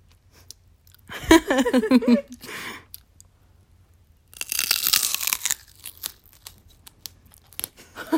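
A loud, wet crunch of someone biting into and chewing celery with peanut butter for ASMR, followed by softer clicking chews. A short hummed vocal sound comes just before the bite.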